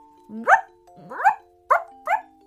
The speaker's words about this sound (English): Suddenly, Ruby began barking again.